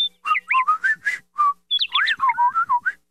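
Bird-like whistling in two quick bursts of warbling, sliding notes, bright and fairly loud, with short gaps between the chirps and no talking, from Patrick in a SpongeBob SquarePants cartoon.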